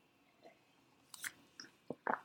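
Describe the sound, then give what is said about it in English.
Someone takes a quick sip of coffee: a handful of short, soft slurping and swallowing mouth noises over about two seconds, with no talking. “Hang on, let me just have a quick sip of coffee here.”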